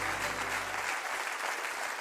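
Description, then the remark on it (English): An audience at Christian Life Austin church, on the balcony and floor, claps loudly in a steady, dense wash of applause, with a low hum fading out in the first second. No one speaks. “Clap real big.”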